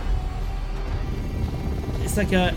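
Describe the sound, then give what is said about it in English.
A steady, loud mechanical rumble of a futuristic, dragonfly-like helicopter aircraft flying in flight simulator video game footage, with a voice breaking in briefly near the end. “It's like a dragonfly helicopter thing.”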